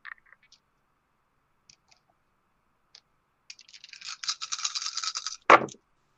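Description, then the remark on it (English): A handful of eight dice, rolled for a stealth check in a tabletop role-playing game, rattles for a couple of seconds as it's shaken, then lands with one sharp clatter. A few faint clicks come first, with no talking. “So you're going to roll double stealth. That's 8 dice.”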